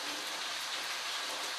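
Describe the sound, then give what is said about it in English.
Steady rain patters down continuously, a dense hiss of drops spread evenly across the short stretch, fairly soft, with no voices or other sounds. “Like I see, you guys hear the rain in the background. It sounds beautiful.”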